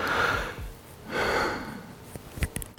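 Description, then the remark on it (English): Two long, heavy breaths, a loud exaggerated inhale and a drawn-out exhale, followed by a few short sniffs and puffs, with no talking. “And then like, or he's trying to breathe super sexually, or like, it's literally just breathing, but people want to spin it to be that.”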